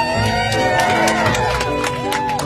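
A packed cabin of passengers cheers and applauds, many voices whooping and shouting together over scattered clapping, loud and sustained throughout without a pause.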